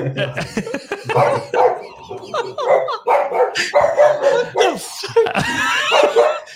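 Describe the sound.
Dogs bark and yap almost nonstop in quick, overlapping bursts, loud, with some whining mixed in. A voice may be faintly audible underneath.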